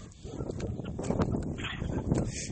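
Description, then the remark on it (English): Outdoor wind rumbles low and steady against the microphone, with gusty buffeting and a few soft knocks over about two and a half seconds. No one speaks. “And it's windy outside.”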